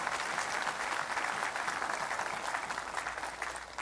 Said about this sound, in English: Somebody give the Lord a clap offering of praise.